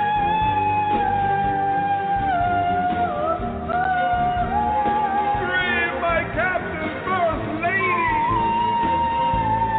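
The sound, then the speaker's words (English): A shrill, screeching singing voice holds loud, high, wavering notes without a break, swooping upward in strained glides midway before settling back onto a long sustained pitch. “I say screech, I mean screech.”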